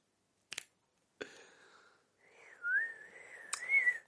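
A child whistles a steady, wavering tone for about two seconds, preceded by two sharp finger snaps and interrupted by another snap partway through. Fairly quiet, with no talking.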